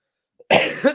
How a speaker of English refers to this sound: Look at this. Everyone's just coughing on air now. This is great.